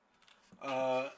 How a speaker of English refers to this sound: let's type foot job into JSTOR and see what happens